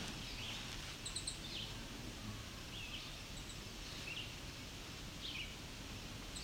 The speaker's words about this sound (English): These are American red starts that are rattling. At least one female.